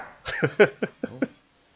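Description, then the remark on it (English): A dog barks in a quick run of five or six sharp, fairly loud yaps, evenly spaced, then stops. “I just had a dog bark in there.”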